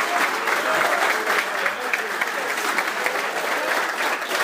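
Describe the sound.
A crowd claps steadily for several seconds, a dense, even wash of applause that stays loud and sustained from start to finish, with faint voices mixed in.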